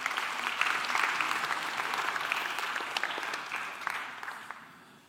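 An audience claps steadily, a dense crackle of many hands that holds strong and then thins and fades toward the end. No one speaks over it.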